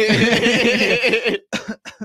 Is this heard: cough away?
yes